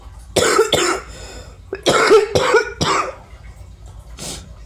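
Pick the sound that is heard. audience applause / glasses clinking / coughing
coughing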